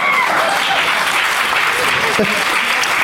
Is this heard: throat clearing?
no